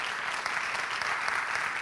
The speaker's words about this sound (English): Will you give a round of applause to these families?